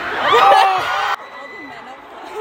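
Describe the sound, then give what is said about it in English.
A concert crowd in a tiny venue at a showcase in the US screams in a dense wall of overlapping high voices, loud and sustained, then cuts off abruptly to a quieter murmur with a few scattered cries. “It sounds like they're booing, but they're just screaming.”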